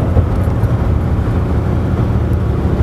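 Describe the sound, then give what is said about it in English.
A steady, loud low rumble of an overloaded truck's V6 engine straining to gain speed, heavy and continuous with no voices over it, the deep hum holding level throughout. “And I can't get up speed because the bitch is really overloaded. My truck's a fucking V6. Little motor, large load.”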